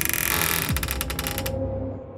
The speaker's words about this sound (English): As the closet door creaked open, Gwendolyn braced for the worst.